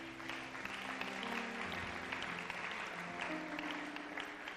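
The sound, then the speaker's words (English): A church audience claps steadily for people coming forward for prayer, a dense wash of many hands, while sustained organ or keyboard chords hold underneath; no voices stand out. “Church, let's put our hands together for them as they come.”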